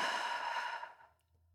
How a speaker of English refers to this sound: Continue that breath in through your nose and out through your mouth.